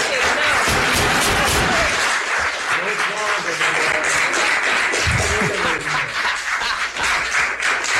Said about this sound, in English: No applause. No applause. And we need to keep it orderly in here, please.